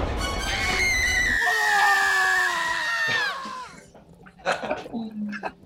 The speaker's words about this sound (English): And he also screamed at the end like that as well.